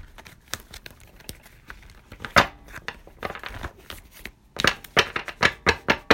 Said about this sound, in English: All right, so we're going to see what's coming up in the Louise Hay cards. See if there's anything that's going to pop out as I'm shuffling the cards.